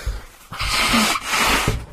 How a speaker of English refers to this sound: So, I've got to blow my nose, sorry, I'm all snotty all of a sudden.